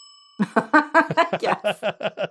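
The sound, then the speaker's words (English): A faint, steady bell-like ring opens, then a voice quickly imitates a bell with about ten rhythmic, sung 'ding' syllables, each short and evenly spaced at moderate loudness, marking a correct guess of Día de los Muertos in a guessing game. “See, you always get the bells.”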